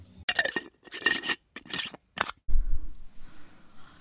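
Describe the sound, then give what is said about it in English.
Lunch being prepared from leftovers in a home kitchen: a run of short, bright scraping and rustling bursts in an uneven rhythm, then a low rumbling thump and a faint clatter that fades out. “I am just preparing some lunch.”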